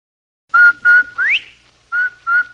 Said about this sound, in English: Andy, did you hear that? Come on, will you? Did I hear what, Amos? That whistle. That's the Rinso White whistle.